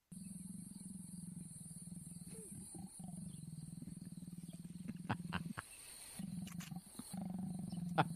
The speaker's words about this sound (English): these are sounds of leopards mating that I've specially found for our audience.